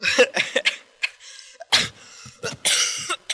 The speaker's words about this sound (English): got to cough away.